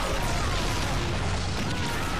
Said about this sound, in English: Another fake explosion.